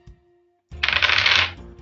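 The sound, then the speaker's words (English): Dice rattle and clatter across a hard surface in one quick burst lasting under a second, fairly loud, after a brief quiet moment, rolled for a vehicles roll in a game. “As you turn onto Harper, I want you to give me another vehicles roll, please.”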